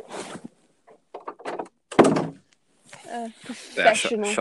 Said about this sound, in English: shut the door.